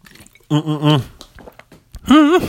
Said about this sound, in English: I'm going to take another sip of my water, so excuse me for 1 second.